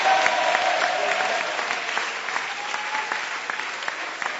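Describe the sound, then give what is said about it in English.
A crowd claps hands for Jesus steadily for several seconds, a dense wash of many hands applauding at once, fairly loud, with faint murmurs from the audience beneath it. “Are you clapping hands for Jesus?”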